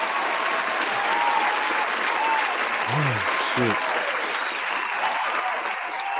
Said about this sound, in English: Round of applause for the chat one time, man.